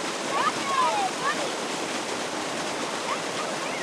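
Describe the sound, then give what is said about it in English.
Water and hundreds of rainbow trout gush from a hatchery truck through a hose into John Hedberg Lake in Nikiski, as the Alaska Department of Fish and Game stocks the lake for the first time, 700 trout in under a minute. The rush is loud, steady and unbroken, with a few faint, brief chirping tones riding over it early on. “he flushes hundreds of trout from a hatchery truck through a hose and into Hedberg Lake”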